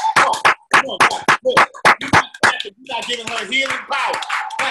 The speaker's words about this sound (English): See, let's clap. Everybody clap. Come on.